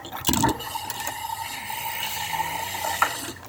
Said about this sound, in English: Alright, well, I'm pretty much done with these dishes, so like, are you good?